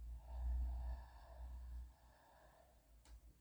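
A person slowly and softly exhales for a couple of seconds during a breathing exercise, breathing out for a four count. The breath is breathy and fades out gently, followed by a brief faint click. No one speaks.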